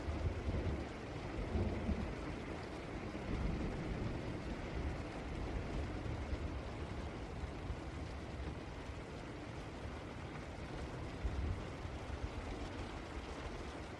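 Steady, dense rain pours without a break, a broad hissing wash with deep low rumbles swelling now and then underneath. No voices are heard.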